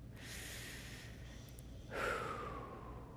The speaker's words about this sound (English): I've like got this headache from breathing too hard. From taking deep breaths, trying to like calm myself down.